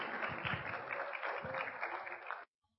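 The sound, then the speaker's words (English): Steady applause from an audience of parents for the nursery children's presentation at a special program, a dense wash of many hands clapping at once for a couple of seconds, then cuts off abruptly into silence. “But they won't come unless you give them a huge round of applause.”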